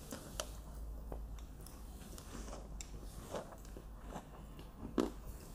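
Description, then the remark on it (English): Someone bites into an apple, picked from a neighbour's tree, with peanut butter, then chews with a steady run of crisp, wet crunches; one louder, sharper crunch lands near the end. No one speaks. “Apples, peanut butter, super good.”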